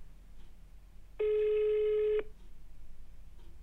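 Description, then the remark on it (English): A single ringback tone of an outgoing phone call to someone in Spain: one steady, even beep lasting about a second, clear and moderately loud over faint background hiss, with no one speaking. “We're dial tone because he's in Spain.”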